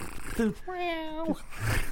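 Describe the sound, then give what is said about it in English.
A person imitates a cat's purr with a steady vocal rumble lasting about half a second, framed by short voiced sounds before and after. “The cat's purrs just drowning out my earpiece.”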